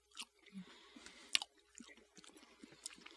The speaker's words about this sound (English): It's hard to fucking chew this guy. Did you stuff it all in? A half of it, and I was like, this is a mistake.